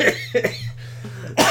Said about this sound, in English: Have you ever gotten sick? Like, this happens to me every single year. I get sick, I get a cough, and I'm not sick anymore. But the fucking cough lasts for 3 months. I've got a 3 months cough.